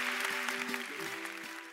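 An audience claps steadily in a dense, continuous wash of applause for a guest who came to answer their questions and share his experiences, joined by a few low sustained musical tones underneath.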